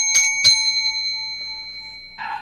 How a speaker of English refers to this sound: All right, ring the bell.